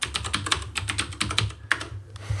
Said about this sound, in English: Look up TextBlade. TextBlade, here, let me type really loudly on my keyboard while I look it up.